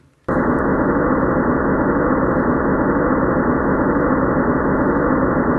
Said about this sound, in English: So that's basically the ambient noise that was going on as synthesized from measurements of the microwave background. Okay? So it's a rumble.